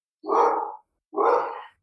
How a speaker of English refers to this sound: My dog's barking, but and then we sleep.